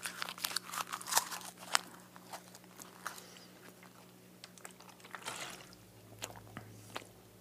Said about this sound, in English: So I just tear it out and then tear the page lengthwise into more manageable pieces. I roll them up, you know, into almost like a chaw of tobacco, and then just start to chew.